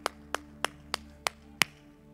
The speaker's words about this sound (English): Come on, in your homes, clap your hands unto the Lord. Hallelujah, hallelujah, hallelujah, hallelujah.